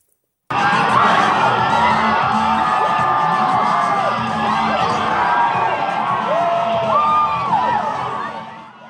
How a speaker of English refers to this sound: Happiness, hugging, and cheering.